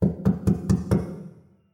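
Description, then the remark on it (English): Five heavy, evenly spaced knocks bang on the wooden front door of a house, loud, each with a deep resonant thud, fading into a short decay afterward. “They raced up the path and straight to Steve's house and banged on the front door.”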